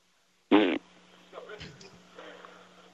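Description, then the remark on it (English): A voice imitates a fart with one short, loud, buzzing raspberry blown through the lips, lasting about a quarter second. Quieter muffled sounds and faint voices follow. “Okay, can you just make the noise with your mouth?”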